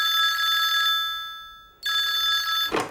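A telephone bell rings in two bright, metallic bursts, its tone lingering and fading in the short gap between them; loud, with no voices.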